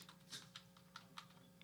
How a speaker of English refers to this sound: Is that literally what you're typing? Fuck. I can't type.